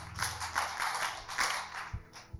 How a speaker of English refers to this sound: Okay, clap for her.